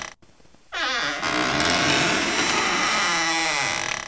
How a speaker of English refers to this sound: I heard that there was a door, right? That was supposed to be a door opening. It was some sort of squeaky sound.